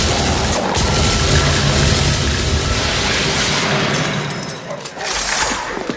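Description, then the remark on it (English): Rapid automatic gunfire from a Zorg weapon with a titanium recharger and a 3,000-round clip, firing bursts of 3 to 300, rattles in dense, sustained bursts, loud and continuous for several seconds, with a brief dip near the end before another burst kicks in. “3,000 round clip with bursts of 3 to 300.”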